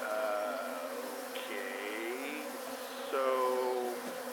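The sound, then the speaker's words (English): A dense, droning buzz of many wasps around a huge nest fills the air as scientists capture some of the wasps for study, with individual insects rising and falling in pitch as they fly past, steady and fairly loud throughout. “The scientists are capturing some of the wasps for study.”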